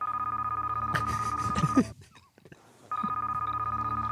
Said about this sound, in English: Your end has a ringtone.